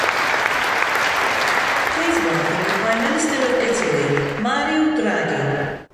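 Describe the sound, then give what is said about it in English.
A large crowd applauds steadily after a speech at the COP climate conference, dense sustained clapping filling the space, with a voice briefly speaking over it near the end before it cuts off. “I don't know what's worse, the fact that he clapped for a speech that he didn't hear, or the fact that he fell asleep when the guy was like, this is the most important thing facing humanity of all time.”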